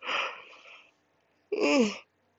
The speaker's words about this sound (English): Excuse me, y'all, I'm yawning because I'm so tired, but I know I gotta get up.